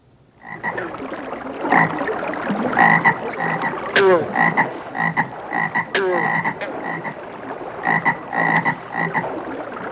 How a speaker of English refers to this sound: Ten seconds of Grandpa Frog. To me, it takes me to a pond and maybe fishing, and it's night